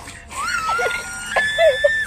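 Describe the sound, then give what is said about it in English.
A person lets out a high, strained scream in two drawn-out bursts, squeaky and partly held back, close to the mic with no other talking. “Mom was on a call, so I screamed like.”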